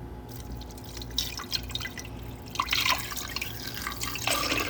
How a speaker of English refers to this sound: because I know everyone is waiting with bated breath to hear the sound of apple juice being poured into a glass fermenter. So here's that sound now.